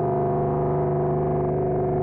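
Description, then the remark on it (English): A sustained, droning synthesizer feedback tone run through a regular reverb setting, with steady stacked harmonics and a washy, reverberant tail, holding at an even loudness with no speech over it. “And we are just listening to the regular reverb.”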